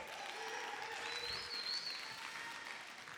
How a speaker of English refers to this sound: Yeah, let's give him a cheer.